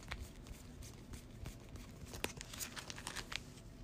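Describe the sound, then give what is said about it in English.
Soft papery rustling and scraping as cards are pulled out of a deck during a card game, taking out the Arcane Researches tome cards that were shuffled in, with a quick run of small flicks and clicks and no talking. “Which I actually shuffle in the deck. I need to pull that out.”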